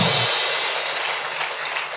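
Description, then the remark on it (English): A crowd claps steadily for about two seconds, a dense, loud wash of many hands that stays even throughout and eases slightly toward the end, with no voices. “Come on, clap your hands, everybody.”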